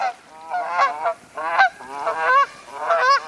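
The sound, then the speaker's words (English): A Canada goose honks repeatedly in loud, nasal calls, several bursts in quick succession with brief pauses, with no talking. “Imagine this Canada goose paddling along on a cold winter day.”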